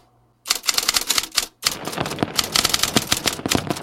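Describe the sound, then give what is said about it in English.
Typewriter keys clack in a rapid, dense flurry, fairly loud, with one brief pause before the typing resumes just as quickly. No voices are heard. “Please indulge me as I add the sounds of a typewriter, rain hitting the window, maybe a little bit of light jazz in the background to give his words just a little more old-timey ambiance.”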